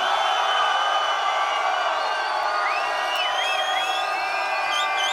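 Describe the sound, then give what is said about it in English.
A large crowd at the Love Weekend special in Newcastle screams and cheers nonstop, a dense, loud roar filled with high shrieks and whistle-like cries rising over it for the whole stretch. “So everybody inside the ride, and I mean everybody, left, right, center, up front, is somebody scream!”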